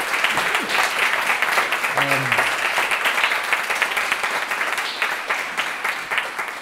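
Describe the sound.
A crowd applauds steadily for several seconds, a dense wash of many hands clapping, with a brief voice murmuring faintly underneath near the start.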